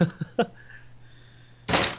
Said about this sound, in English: Oops, sorry. Just accidentally slammed my desk. Trust me, I have had much worse happening on live broadcasting. No, I was sitting up and my knee accidentally slammed the desk.